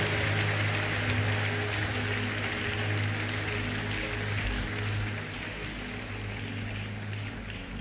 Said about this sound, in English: Let's give Jesus a big hand clap for salvation.